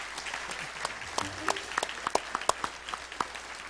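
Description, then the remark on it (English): An audience at a church service applauds to give God a hand, many hands clapping in a steady, scattered patter with sharper individual claps standing out, moderately loud and continuing throughout without any speech. “Let's give God a hand this morning.”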